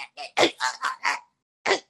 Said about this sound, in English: Oh, you really want me to talk? Yeah, but clear your throat first.